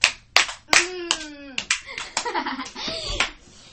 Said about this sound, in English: Give a round of applause for me, please.